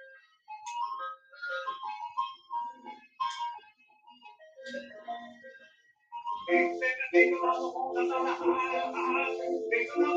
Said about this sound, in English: And that's the tune to the ice cream truck.